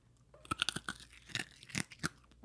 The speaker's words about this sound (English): literally chomping on his lollipop.